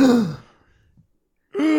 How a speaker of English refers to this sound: You made yourself gasp with that one. Yes, did you just find that out yourself?